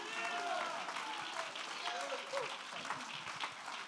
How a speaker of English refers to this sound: Somebody clap your hands and shout Jesus.